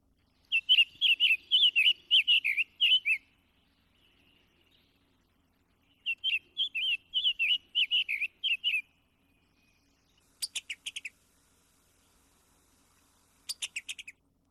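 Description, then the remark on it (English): A summer tanager, a red bird of summer, sings two clear, robin-like phrases of burry warbled notes, then gives two short bursts of quick staccato call notes. It is distinct, with no talking. “So listen and look for this red bird of summer, the summer tanager, in our woods. Here's what it sounds like.”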